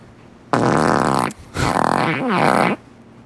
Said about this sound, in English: And that was we have four farts. The usual gang is all in here.